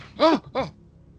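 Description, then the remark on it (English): Two loud, heavy breaths in quick succession, each a voiced, strained pant with a groaning edge, followed by quiet, voicing a character leaning up against a mausoleum and breathing heavily. No words are spoken. “So Sir Miller's echo disappears, but he is still leaning up against the mausoleum, breathing heavily.”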